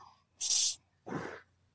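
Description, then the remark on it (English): An airy breath drawn deeply in through the gut, followed by a breathy exhale a moment later; two distinct breath sounds with no talking. “But if I was to breathe in through my gut, it would be.”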